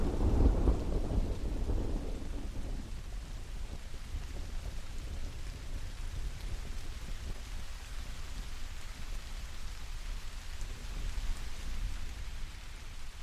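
Steady rain falls on an island throughout, a dense hiss with a low rumble of thunder booming near the start before fading into the continuous downpour. No one speaks.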